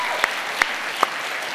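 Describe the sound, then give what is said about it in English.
An audience at Calvary applauds in agreement with a statement praising its pastors, a dense, steady wash of clapping, with three sharper, louder individual claps popping out at roughly even intervals. No voices are heard. “I'm writing down a couple people I did not see clap.”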